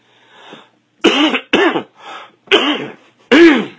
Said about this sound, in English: Sorry, came back with a little bit of a cough from Puerto Rico.